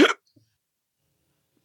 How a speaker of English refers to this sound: Whoa. He's got the hiccoughs. I do. He's got the goddamn hiccoughs.